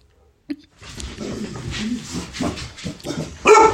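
Dogs barking and yipping in a busy, overlapping burst, with whimpery vocalizations mixed in and a louder, sharper outburst near the end.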